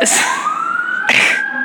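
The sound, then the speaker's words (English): A fire truck siren wails loudly in a neighborhood, its steady tone sliding upward in pitch, with rough bursts of noise at the start and again about a second in. “It was a fire truck.”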